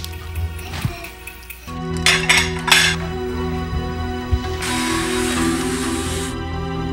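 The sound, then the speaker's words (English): Dishes and cutlery clink and clatter during washing up, with a burst of sharp clinks near the middle over steady running water and a low background hum. “I'll start the floors. Do the dishes.”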